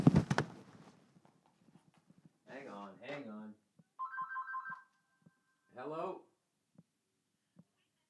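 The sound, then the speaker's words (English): A landline house phone gives a single electronic ring, a steady trilling tone lasting under a second, between bursts of talking, with faint scattered clicks like footsteps around it. “Yes, I still have a house phone.”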